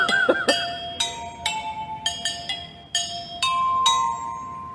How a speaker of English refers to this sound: So it's like a xylophone made out of vacuum cleaner hoses, metal vacuum cleaner hoses, played with a plunger and held up by a mop.